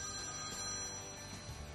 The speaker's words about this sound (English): Is that your phone